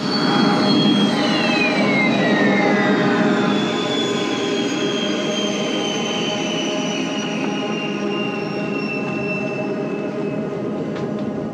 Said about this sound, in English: If I had to guess, some sort of airplane. Yes. Part of the sound is the sound of reverse thrusters, he says, which are the sound a commercial jet makes when it hits the runway and reverses airflow into its engines.